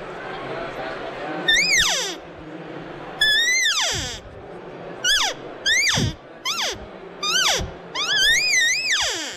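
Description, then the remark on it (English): A handheld open reed call named the floozy, a turned maple wood call, is blown to imitate elk cow calls: about seven loud, nasal, mewing cries, each starting high and sliding steeply downward, with short pauses between them. “It's a real pretty call, and you can get some really nice cow sounds with that as well.”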